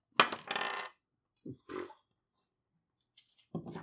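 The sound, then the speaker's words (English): Dice are rolled across a tabletop for a survival check: a bright rattling burst first, then a couple of shorter knocks a moment later and another clack near the end. “Okay, so you roll.”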